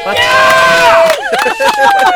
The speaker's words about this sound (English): Yeah, we actually have a live crowd here in the front stretch of the Oxford Plains Speedway. Hey, like, here, give us a round of applause, friends.